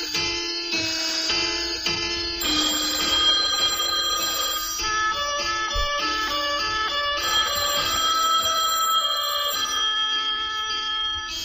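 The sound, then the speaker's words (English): A telephone rings loudly an arm's length away, a continuous bright electronic trill that shifts between tones without pause for the whole stretch, with no one speaking. “The ringing was harder to figure out. It was an arm's length away. A telephone.”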